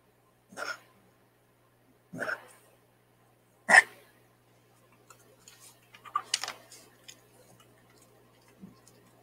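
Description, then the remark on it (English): A puppy coughs in three sharp, separated bursts, followed by a cluster of rougher hacking, retching dry-heave noises, then a faint final sound, with no talking. “And this puppy keeps coughing.”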